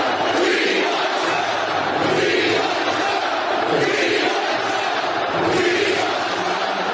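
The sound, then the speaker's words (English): A massive packed-house crowd at a Trump rally in Wilkes-Barre, Pennsylvania, before the rally started, roars and cheers in a dense, sustained wall of voices, with chanting swells rising and falling steadily over seven seconds and no clear single speaker. “this was even before the rally started, the massive packed house in Wilkes-Barre, Pennsylvania.”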